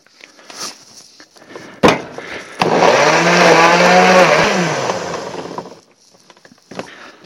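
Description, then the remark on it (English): A blender whirs loudly for about three seconds, blending a marinade of soy sauce, vinegar and beer for sliced beef. It gives a steady motorized drone with a slight change in pitch as it runs, preceded by a couple of clicks and light handling noises. “All my ingredients are now in a blender.”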